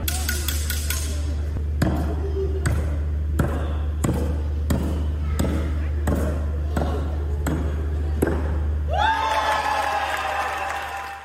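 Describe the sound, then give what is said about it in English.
A series of sharp thuds as a knife-thrower's knives strike a wooden knife-throwing board with a 99-year-old woman standing in front of it for her 100th birthday, roughly ten impacts at a steady pace over a constant crowd murmur, then a final ringing, metallic twang. “Our knife-thrower, Tony, will attempt not to hit any with the knives.”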